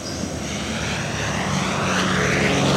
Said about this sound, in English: An American bomber roars just over the jungle treetops bordering a long stretch of beach. Birds scatter. Monkeys shriek. The Douglas B-26 Invader was one of the most ferocious fighting aircrafts in both World War II and the Korean War.